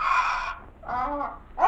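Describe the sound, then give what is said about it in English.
A large gray pet parrot named Napoleon squawks in harsh, strained bursts: a long rasping call, a brief pause, a second wavering cry, then a third beginning abruptly. The calls are fairly loud, with no voices. “One day that infernal squawking of yours will drive me to wring your neck.”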